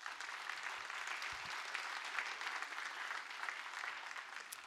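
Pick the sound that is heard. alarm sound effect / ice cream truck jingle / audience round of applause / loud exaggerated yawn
audience round of applause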